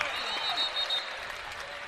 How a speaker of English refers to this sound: The two seniors, a well-deserved ovation on a big night for BYU. A bow from Gideon and a lot of smiles from a sold-out crowd here at the Marriott Center.